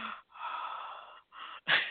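Heavy, raspy breathing over a muffled, narrow-band phone line: a few long drawn breaths in steady succession, the last one a sharper, louder gasp, with no talking.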